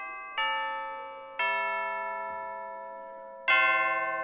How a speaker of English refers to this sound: So here we have the tubular bells that recreate church bells.